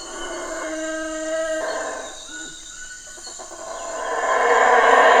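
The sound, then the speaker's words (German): Howler monkeys howl very early in the morning, starting with a steady, droning tone that gives way to a swelling, breathy roar growing louder toward the end. No one speaks. “Die Brüllaffen, die sind wirklich in der Nacht.”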